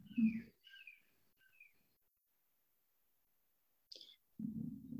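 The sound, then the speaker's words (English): Faint birdsong coming in from Jokoji: bird chirps trill briefly in the first couple of seconds, then a single short call near the end, set against quiet pauses and low rumbling noise. “So as we were sitting today, there was the bird song coming in from Jokoji there, which always brings me right back to Jokoji.”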